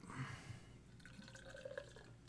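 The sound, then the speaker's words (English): Sour beer pours into a glass with a soft, continuous trickle and faint dripping, the tone rising slightly as the glass fills. Quiet, with no voices. “So you could pour.”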